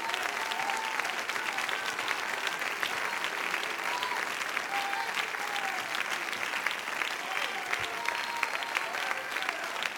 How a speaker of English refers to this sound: Woo! Clap your hands again to my Jesus.